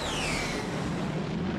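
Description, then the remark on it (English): A jet airplane sound effect: a steady, loud roar of engine noise with a high whine that slides downward in pitch, plus a low hum underneath, with no talking. “Cue the jet sounds.”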